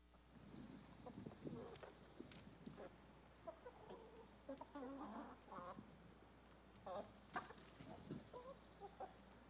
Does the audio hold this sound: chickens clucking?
yes